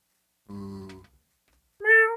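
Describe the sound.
A person imitates a cat with two meows, a lower drawn-out one followed after a short pause by a higher, brighter one, both fairly loud.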